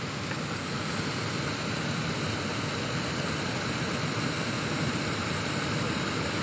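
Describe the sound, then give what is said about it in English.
A steady, dense roar of rushing water from a waterfall in South Africa fills the scene, constant and unbroken, with no voices or other sounds on top. “Guided meditation at a waterfall in South Africa”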